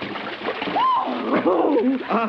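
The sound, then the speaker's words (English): Steady splashing and sloshing of water as people plunge into very deep water to swim, with brief excited vocal cries rising over the churning water, fairly loud. “Do you swim well? It's very, very deep. Oh, like a fish. Come on, let's get in.”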